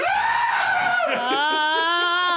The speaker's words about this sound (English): And at that moment, from the depths of the graveyard, a scream pierces the night.